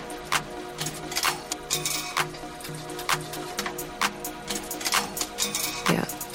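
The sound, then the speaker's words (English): A dip-and-dunk photo booth's motor and transmission hum steadily while sharp mechanical ker-chunk clunks repeat roughly every half second to a second, ending in a louder thunk as a knife cuts the paper from the reel. Nobody speaks. “You're mostly just hearing the motor. Like ker-chunk sound.”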